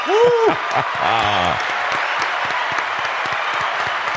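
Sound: round of applause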